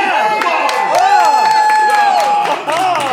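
A crowd cheers loudly and steadily, many voices yelling and whooping at once, with scattered sharp claps cutting through the roar.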